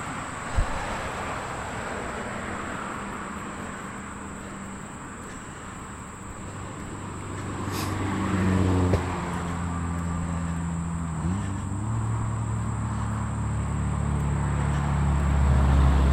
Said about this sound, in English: Pretty noisy over here running on the path next to the road. Rockbridge is a fairly busy road. It's only 2-lane, but a lot of cars on it.